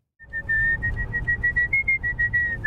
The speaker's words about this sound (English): For many people, there's nothing like a good whistle to pass the time.